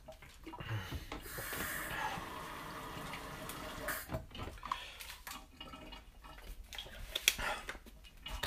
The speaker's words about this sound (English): Sorry, I'm getting water. I'm kind of having one of my spells.